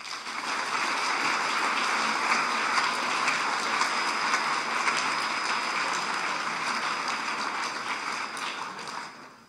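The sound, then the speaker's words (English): A large audience at Hope College claps steadily for about nine seconds to welcome a guest speaker, a priest and exorcist, before his talk. The applause is a dense, even wash that holds its level throughout and tapers off only at the very end, with no voices over it. “It's always a great sign of faith when you clap for somebody before you hear them speak, because you're not sure what's about to come out.”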